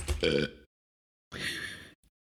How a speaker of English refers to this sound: Are you done burping? I totally heard that.